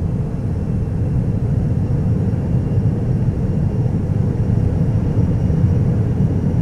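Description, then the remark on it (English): A KR2 vehicle blasting off with a loud, steady engine roar, a dense low rumble holding at constant strength for several seconds with no voices over it. “I'm blasting off again.”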